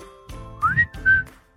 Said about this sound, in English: Is it going to be annoying to edit out a whistle? Nah, I'll just leave it in. It's completely out of time.